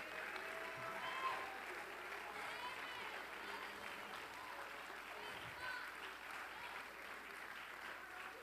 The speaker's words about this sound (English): Oh, come on, clap your hands and praise the Lord.